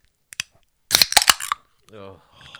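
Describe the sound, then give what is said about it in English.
Two cans of Captain Morgan and Cola (9%) are cracked open almost in unison: a couple of faint clicks, then a loud, half-second burst of sharp pops and fizzing hiss. A voice sounds briefly afterward. “It was two cans, just in case you couldn't tell.”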